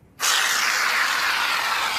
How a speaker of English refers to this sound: Now grab a can of Lynx 2-in-1 Shower and Shave. Shake it well with your dominant arm. Spray a liberal amount into your palm.